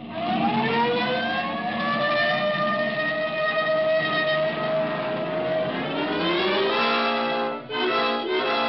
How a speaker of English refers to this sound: This time you can use the siren.